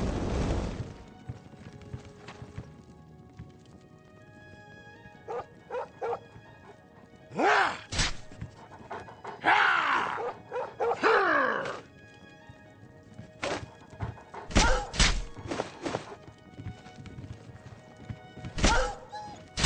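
Dogs named Bailey and Kizu bark in scattered, irregular bursts, some sharp and short, others longer and more drawn out, with quieter breathy panting sounds in between, at their home in the town of Coral.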